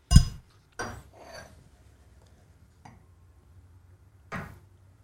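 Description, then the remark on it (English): Several sharp clinks of glassware ring out at irregular intervals, fairly loud, with quiet room tone between them and no talking. “Just your clinking tables.”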